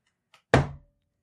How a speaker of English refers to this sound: And you hear Jubna knock on the door. One solitary knock.